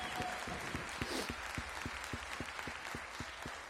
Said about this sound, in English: Come on, let's give them a hand clap. Thank you.